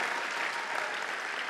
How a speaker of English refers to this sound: Come on, anybody out there truly believe that God has got something good ahead for you? If you do, just clap your hands and praise Him for 5 seconds. Come on.